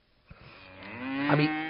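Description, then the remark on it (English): A single cow moos, a long low bellow that swells steadily in loudness and holds for over a second, with no talking. “I'm eating cow.”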